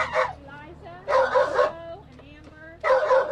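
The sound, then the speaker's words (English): Several dogs bark and yip in short, loud bursts from plastic animal carriers in a gravel lot beside the Greene County Humane Society shelter, with whimpering pitched whines between the barks, sounding slightly boxy; the dogs are heading to foster homes. “This morning, these dogs are heading to foster homes.”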